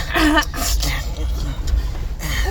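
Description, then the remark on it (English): Several short, harsh coughs and throat-clearing rasps from a person with a bad cough come in quick succession, fairly loud, with a bit of vocal sound mixed in over a low background rumble. “Sorry, I have an awful cough.”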